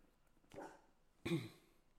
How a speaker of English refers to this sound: But going to mute the mic real quick while these dogs are barking.